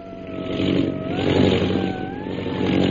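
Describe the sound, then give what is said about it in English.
A disabled propeller plane's engine drones loudly and steadily as it comes down in a long glide, the pilot fighting to keep it in the air; its uneven tone wavers up and down as it labors and strains, with no voices present. “Meanwhile, far ahead, Myra Trent's pilot fights desperately to keep her disabled plane in the air.”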